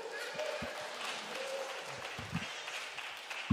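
A crowd claps steadily for a few seconds for a tall man invited up to the front, a dense, even patter of many hands with no voices standing out, holding at a fairly constant loudness throughout.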